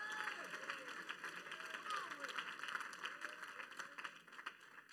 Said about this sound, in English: If you believe it, clap your hands and shout unto God.